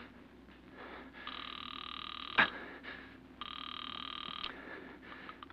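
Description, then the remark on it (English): A telephone rings twice on the line as a call goes through to a police station, two steady buzzing bursts about a second long with a pause between, and a sharp click after the first ring. Moderately loud, with no talking. “Then, terrified, you pick up the phone. Operator, get the police. Hurry.”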